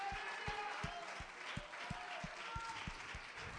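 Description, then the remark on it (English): An audience at a church service claps their hands to the Lord in a steady, roughly even rhythm, with crowd noise and scattered voices blending underneath the broad wash of clapping. “Come on, clap your hands to the Lord one more time before you're seated.”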